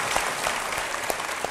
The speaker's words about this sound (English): But I want to give James Dasher a round of applause. Thank you for joining.